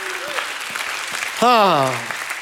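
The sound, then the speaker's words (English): A crowd claps steadily in a dense wash of applause, given as a hand clap and shout of praise to God, and partway through a loud, drawn-out shout of praise rises above the clapping and falls away. “Give God a hand clap and a shout of praise.”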